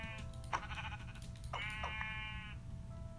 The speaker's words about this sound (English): A sheep!